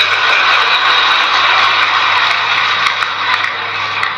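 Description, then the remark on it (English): A Predator military drone's engine drones steadily overhead, a loud, continuous whirring roar with a low hum beneath it, holding level throughout with no voices. “I have two words for you. Predator drones. You will never see it coming.”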